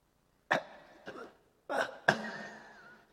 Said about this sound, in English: Don't go and do that at a party. Do that, I'll cough.